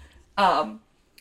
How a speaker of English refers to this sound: That's my coffee. Don't touch my coffee. Just watch. She's going to try to walk across your keyboard. That's fine. Don't touch it. Sorry, there's a cat. We have a cat interruption.